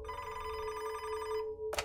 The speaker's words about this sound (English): phone rang at his desk, so he answered it, and an FBI agent introduced themselves on the other line.